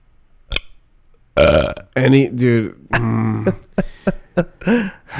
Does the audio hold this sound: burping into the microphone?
yes